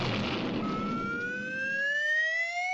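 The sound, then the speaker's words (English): A fire engine siren of the Frostbite Falls Volunteer Fire Department starts to wind up, its steady tone rising in pitch, just as a loud, rough burst of noise fades away beneath it. No one speaks. “Hey, that one belongs to the Frostbite Falls Volunteer Fire Department.”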